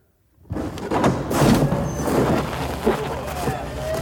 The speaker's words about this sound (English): All right. I think this is it. I'm going to have him open up the door.